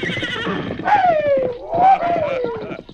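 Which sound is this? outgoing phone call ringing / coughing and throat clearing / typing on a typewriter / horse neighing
horse neighing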